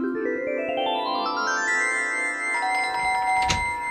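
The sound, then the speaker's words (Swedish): An electronic doorbell chime, rung by someone at the door, plays a melody of notes stepping upward in pitch, then holds bright ringing tones, ending with a short click. It is clear, with no voices. “Så jag hann varken bajsa eller duscha innan hon ringde på dörren.”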